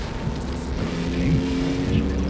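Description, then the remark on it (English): A car engine drones steadily, its low motor tone wavering and rising slightly as it pushes ahead at speed, with no voices over it. “our car will leave you in nothing flat, buddy. How's that for speed, eh?”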